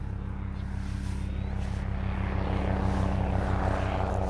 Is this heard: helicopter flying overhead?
yes